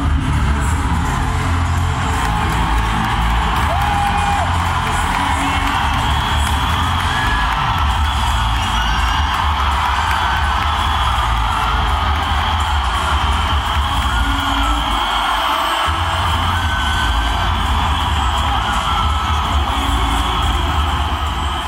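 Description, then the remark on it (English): A huge cricket stadium crowd in Chennai roars continuously as Dhoni comes out to bat, a dense wall of cheering, whooping and shouting, with a DJ encouraging them to shout Dhoni. It stays loud and steady throughout with no pauses, individual yells rising briefly out of the din. “It's quite extraordinary just the impact that has on the crowd.”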